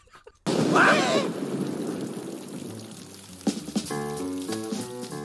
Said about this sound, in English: Summer rains, you can never predict them.